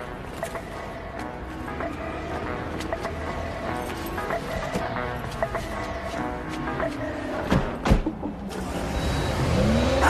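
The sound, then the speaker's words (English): A sports car's engine runs steadily and then revs up as the car pulls away, fairly loud throughout, with a busy mix of mechanical and background noise layered over it. “They're out of here. They take off, go on their joyride.”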